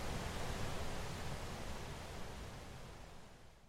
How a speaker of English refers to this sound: You're listening to Gullfoss Waterfall.